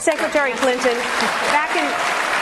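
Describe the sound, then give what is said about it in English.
A crowd applauds steadily at a political debate after Hillary Clinton's answer on a single-payer health system, the dense clapping mixed with scattered cheers and voices, sustained and fairly loud across the moment. “And she handles this very adroitly, because she ends up with a pretty solid applause line at the end.”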